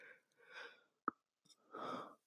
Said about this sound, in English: Sorry, that was a big yawn.